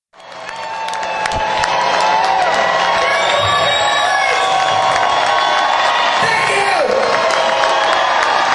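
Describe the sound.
A loud concert crowd roars with sustained cheering, whistles and applause, building within the first couple of seconds and staying dense throughout, while a voice briefly calls out over the noise.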